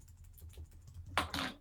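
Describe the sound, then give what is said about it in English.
Soft, quick typing on a computer keyboard with a run of small irregular clicks, ending in a couple of louder, harder keystrokes. Fairly quiet, with no voices. “Apparently typing is hard.”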